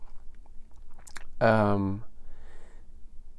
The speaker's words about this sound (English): If you guessed that it was about half an ice cube in my mouth, being pushed deftly by my tongue against all my teeth, then I swallowed it by accident and coughed and spit it out.